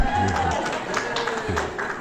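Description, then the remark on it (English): An audience claps for a couple of seconds for the speaker's wife as she stands up during a church talk, a dense, steady patter of many hands at moderate loudness, with some voices mixed in among the applause. “Yeah, everybody clap, please.”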